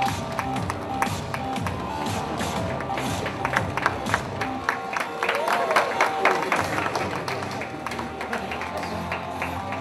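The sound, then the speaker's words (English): A round of applause from a crowd for a band: dense, irregular clapping that keeps up steadily for about ten seconds, with a murmur of voices and crowd noise underneath, strongest early on. “Round of applause for ….”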